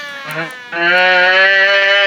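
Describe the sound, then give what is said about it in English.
A voice imitates a 1930s siren: a short wavering hum, then a loud, steady, buzzy wail held for over a second, alone. “I sound like a 1930s siren.”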